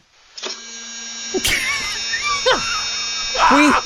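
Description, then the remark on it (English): A humane mouse trap alarm, heard on a camera recording, sounds a steady, high electronic tone that keeps going. Shorter chirping, bending sounds rise and fall over it, with a brief burst of louder noise partway through. “I think it's an alarm. You know, I mean, it's letting you know.”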